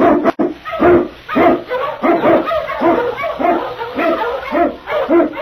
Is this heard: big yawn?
no